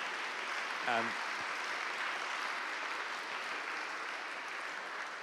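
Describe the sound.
An audience at an evening talk claps for the speaker in a steady, dense round of applause that holds at an even level throughout, with one short voiced cheer rising briefly near the start.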